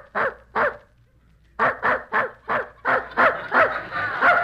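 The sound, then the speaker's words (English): A dog in the next room barks two times, pauses briefly, then lets out a steady run of about eight more barks in quick rhythm, fairly loud, with no voices alongside. “There's that dog in the next room barking again.”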